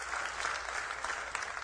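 Audience applause: a steady, dense wash of many hands clapping at once, even in loudness throughout with no voices on top.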